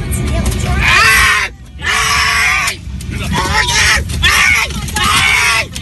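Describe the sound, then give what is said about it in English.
A 69-year-old man yells and screams in repeated anguished bursts as he is dragged out of his seat on a flight, amid a commotion of other voices, loud, with brief pauses between the outcries. “That's the most terrifying part, is hearing the poor man yell like that.”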